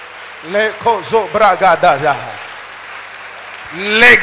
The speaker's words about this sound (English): Any man or woman that they have consulted because of you this year that you will not succeed, as you clap your hand and pray, let that person disappear from this earth for you to have your freedom. Lift up your voice and pray that prayer.